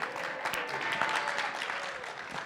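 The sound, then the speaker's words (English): People clapping steadily, a dense wash of overlapping hand claps at moderate volume that carries on evenly without pause, with a few sharper individual claps standing out; applause for the piano player before he reads verses. “Well, why don't you give him applause for looking good today?”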